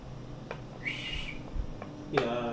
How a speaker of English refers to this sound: He whistles for the horses to trudge off. And set off onto the hills.